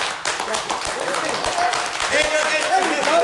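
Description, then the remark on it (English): A crowd of men clapping together while the women do not clap, a dense, steady wash of applause that holds for a few seconds and swells slightly toward the end, with a few voices calling out over it. “Not everybody, all the guys clap except for the women.”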